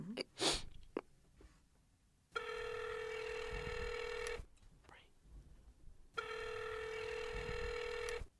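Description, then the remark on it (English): A few quick clicks and beeps of a phone being dialed for a prank call to a tanning salon, then two long, steady ringing tones with a pause between them, like a call waiting to connect. “I'm about to prank phone call, y'all.”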